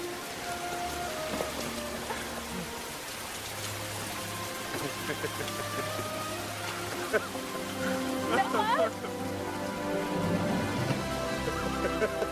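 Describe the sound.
Steady rain pours down in a continuous hiss, mixed with sustained musical tones and occasional voices that rise near the end.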